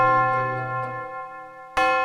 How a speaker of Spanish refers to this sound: Campanas de medianoche. Ya es 1823, doña Rafaela.